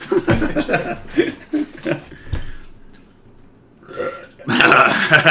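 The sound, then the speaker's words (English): A long, loud, gurgling burp rolls out in several croaky pulses, followed by a brief bright burst of laughter or chatter at the end. “Burp brought to you by ….”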